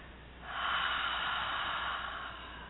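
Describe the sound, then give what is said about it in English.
A long, airy deep breath swells in, breathing up from the base of the spine, and holds steady for about two seconds, then fades slightly at the end, before exhaling out of the mouth. No one speaks. “So without further ado, sit back, let's just take a deep breath in, breathing up from the base of the spine, and then exhaling out of the mouth once you're filled up at capacity.”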